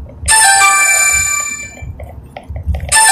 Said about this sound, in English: Phone call, but it's just a number we don't recognize. So we let voicemail get that.